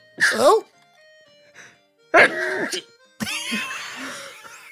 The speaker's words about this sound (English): So shit. They were rubbish sneezes.